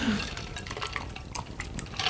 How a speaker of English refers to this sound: My dad was a television engineer, so, and he's still here, but let's raise a glass to him. Cheers, Dad. We haven't done it in a while, so.